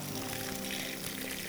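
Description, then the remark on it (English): Water is poured in a steady, continuous stream until it overflows, soaking the front row of an audience. It is fairly loud, with a bright splashing hiss that holds unchanged for the whole moment, and there are no voices. “And he waters us. And this is like, I'm soaking the front row here.”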